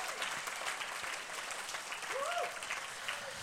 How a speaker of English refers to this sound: Now you can give Jesus a big clap and praise him right here.